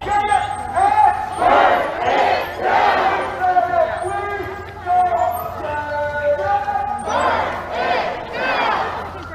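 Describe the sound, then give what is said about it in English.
A crowd of protesters yells and chants in loud, rhythmic bursts, many voices shouting together in a steady cadence over a constant low rumble, with brief dips between phrases. “Okay, they are going through the streets of Washington yelling, burn it down.”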